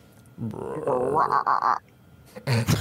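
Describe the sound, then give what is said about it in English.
Several pink toads croak together in a short chorus, their calls coming as a run of rapid, buzzy pulses, loud, with brief gaps between bursts. “And just from around you, you hear the chorus of from these pink toads.”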